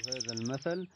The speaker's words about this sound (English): There was a rooster in the morning. Birds during the day.